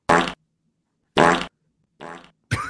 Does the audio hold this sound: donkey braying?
no